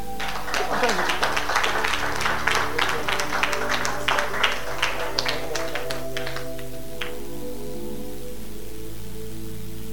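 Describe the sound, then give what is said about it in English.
A burst of audience applause, dense overlapping claps that thin out and stop after about seven seconds, with a steady low hum underneath. “If I'm trying, you should clap.”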